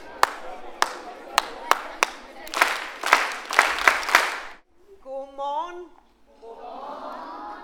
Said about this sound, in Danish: Hver morgen starter H.C. Andersen Skolen med en morgensamling, hvor alle skolens 320 børn samles. Der er en spredt mumlen, men når klappet lyder, er der ro.